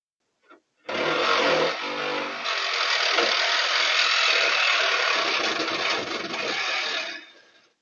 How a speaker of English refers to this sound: In total, he makes just 10 seconds of noise with his cutting tool, and the entire theft from beginning to end takes only a minute.